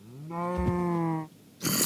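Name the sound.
cow mooing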